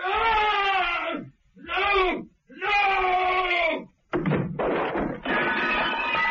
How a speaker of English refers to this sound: The silence was shattered by a terrible scream and a crash.